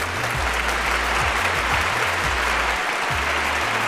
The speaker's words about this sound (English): Thank you, fans, for always the warm and loving applause.